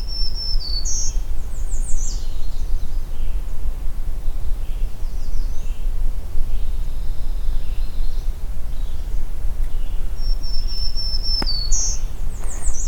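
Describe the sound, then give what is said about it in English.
A black-throated green warbler, out in the open on top of a dead jack pine under overcast skies, sings high, buzzy phrases twice, once at the start and again near the end, over a steady low rumble of wind or other noise. Fainter chirps fill the gaps. “Black-throated green warbler is out in the open.”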